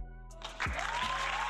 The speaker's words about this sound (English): No, you don't deserve no clap for that.